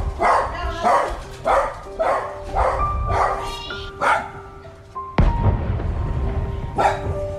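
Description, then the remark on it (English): A dog, Bing, barks repeatedly in a steady rhythm, loud, upset by artillery gunfire marking the 150th anniversary of the Australian Artillery, with a couple more yelps near the end over a rumbling background. “The gunfire upset a few dogs, especially my Bing.”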